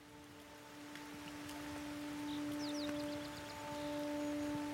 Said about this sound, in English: It's early morning on September the 12th, 2011. Greg and Julie wake to the light patter of rain. Outside the tent, a cool mist rolls in off the lake.